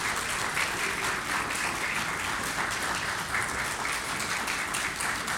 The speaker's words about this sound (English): we get a round of applause for the Lord right now?